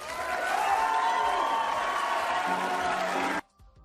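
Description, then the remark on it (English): A large audience applauds loudly and steadily after a debate, with a few scattered cheers mixed into the dense clapping, before the sound cuts off abruptly near the end. “Thank you so much for joining us tonight, and now your applause.”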